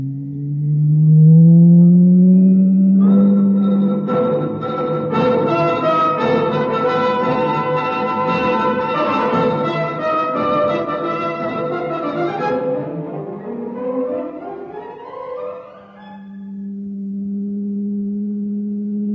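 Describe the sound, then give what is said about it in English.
An elevator starts up with a loud electronic hum that swells into layered, rising whining tones for several seconds, then settles back to a steady low drone. No one speaks. “I'm going to start the elevator.”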